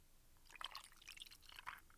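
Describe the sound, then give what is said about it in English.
Old Forester whiskey is poured over ice, a soft trickle of liquid with faint bright clinks and splashes over about two seconds, quiet and with no voices. “So I brought out a low budget whiskey to go with it.”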